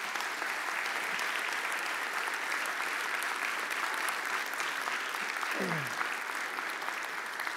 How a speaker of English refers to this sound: And yes, you can give a round of applause.